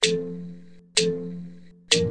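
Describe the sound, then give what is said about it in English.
A clock chimes three times in a steady, evenly spaced rhythm, each clear bell-like strike ringing out with bright overtones and fading slowly before the next. No voices are heard. “I'm a machine that's built with gears, and each hour you hear my chime.”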